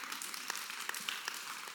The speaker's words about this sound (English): Yeah, you can clap. It's okay.